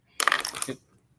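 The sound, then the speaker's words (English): A brief, bright metallic jingle and clatter of the clips of basic tool utility leashes, used for pliers and scissors, being handled, lasting about half a second, then quiet. “So these are just your basic tool plier or your tool leashes, put your scissors on, just your basic tool utility leash that you buy.”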